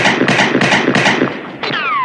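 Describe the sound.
A voice imitates gunfire: a rapid string of about six breathy, bursting shots, then a single high, falling "pew" zap that slides downward in pitch. Fairly loud, with no other talk.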